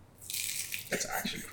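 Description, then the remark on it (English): Loud, crackly crunching of an Aldi sausage roll with pastry being bitten and chewed, with a bright, sustained crackle followed by several irregular chomping bursts, heard on its own without talk. “Eating the crunchiest sausage roll ever.”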